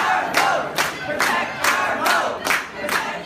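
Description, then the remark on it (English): Protesters at the Wisconsin state capitol, opposing Republican proposals, chant loudly in unison, a crowd roar punctuated by steady rhythmic shouts repeating roughly twice per second, with no single voice standing out. “There have been protesters there every step of the way.”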